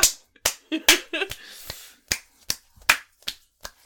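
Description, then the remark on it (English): About a dozen limp-wristed claps, soft, slappy and uneven in rhythm, sometimes bunched together and sometimes spaced out. No one speaks. The claps are given mockingly in response to a tweet by Justin Trudeau. “Limp wrist claps is what he gets.”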